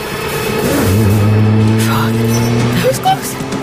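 A car engine revs, holding a loud, steady low drone for about two seconds before easing off, with tire and road noise underneath.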